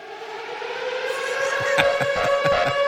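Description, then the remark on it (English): An air raid siren, used as a klaxon for when somebody is fired from the cabinet, wails loudly and continuously, its pitch climbing slowly and steadily, with a rhythmic pulsing creeping in during the second half. No voices are heard. “It's more of an air raid siren kind of thing, right?”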